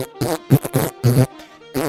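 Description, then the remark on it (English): A voice makes a string of buzzy, fart-like raspberries while blowing fart bubbles into the coffee in a coffee mug, about five uneven bursts with short gaps, fairly loud and low-pitched, with no other talking. “Well, let me pull down me pants and blow some fart bubbles in it, and you'll have a nice shamrock shake.”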